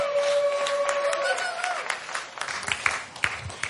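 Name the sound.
audience cheering and applauding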